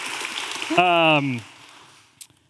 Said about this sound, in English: Yes. Yes. Thank you. Round of applause.